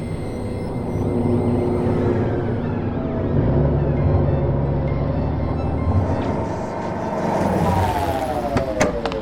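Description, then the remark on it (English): Steady traffic ambience at a rest stop area on the New Madrid Coastal Expressway, Salamanca City, South Island, at 8:17 p.m. on New Year's Eve. A continuous low rumble of engines rises and falls as vehicles pass, plus a few sharp clicks and a faint whining tone near the end. “New Madrid Coastal Expressway. Rest stop area.”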